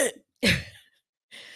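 Three short, rough coughing bursts, the middle one strongest and most throaty, separated by brief silences with no talking.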